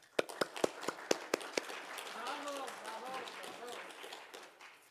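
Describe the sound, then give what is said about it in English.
A short burst of applause for people who came to work in the sanctuary: several sharp, evenly spaced claps ring out, then fade into a low murmur of voices from the gathering. “I just would like to offer a round of applause for these folks.”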